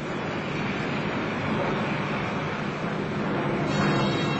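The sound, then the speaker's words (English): A steady, dense roar of massed German aircraft engines during an aerial attack on the defences of London fills the whole stretch, a broad droning wash that holds at a constant loudness and swells slightly near the end, with no voices. “Germany's morning hate in this war takes the form of massed aerial attacks on the defences of London. So this is now a familiar sight and a familiar sound.”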